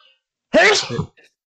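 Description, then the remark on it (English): A single sharp sneeze bursts out, loud and explosive for about half a second, followed by a faint breathy trailing sound. “Bless you.”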